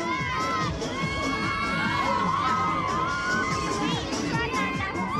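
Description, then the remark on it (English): A crowd of teenagers scream and shriek together on a giant fairground ride that throws them up in the air, sustained, overlapping high-pitched cries rising and falling, loud, with a busy, chaotic background throughout. “They're all laughing and screaming.”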